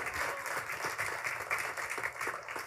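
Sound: audience hand clapping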